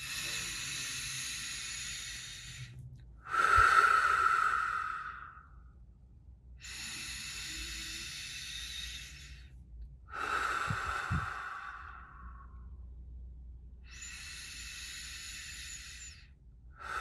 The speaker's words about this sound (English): We take a couple more deep breaths.